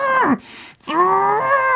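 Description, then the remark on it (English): A voice imitates the Tin Man, rusted and unable to move because he needs oiling, screaming: a short strained wail that slides downward, a brief break, then a long, loud, groaning drawn-out cry with a harsh, moo-like tone. “the noise of the Tin Man screaming and not being able to move because he needs oiling.”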